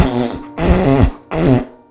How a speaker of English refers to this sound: So your wife also quickly gets on a headstand and joins in the farting.